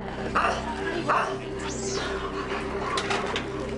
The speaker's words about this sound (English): There's dogs just like growling and barking and stuff.